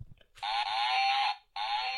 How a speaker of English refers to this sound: Let's try the cow noise.